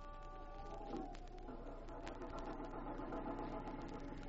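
A car engine idles steadily as the car pulls into a parking spot in Carville, a former mining town, a continuous low rumble with a faint mechanical knock running through it, no voices over it.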